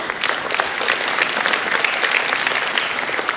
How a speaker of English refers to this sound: hard to interpret your clapping sometime.